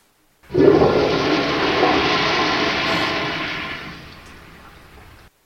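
A toilet flushes up close: a sudden loud gurgling rush of water that holds steady for a few seconds, then drains away and fades out. No voices are heard.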